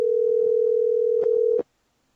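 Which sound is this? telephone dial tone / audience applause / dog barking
telephone dial tone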